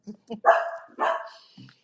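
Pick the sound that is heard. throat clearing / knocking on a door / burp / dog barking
dog barking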